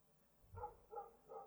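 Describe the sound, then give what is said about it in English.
A dog barks three times in quick, evenly spaced succession, moderately loud, with no voices over it. “Stupid dog!”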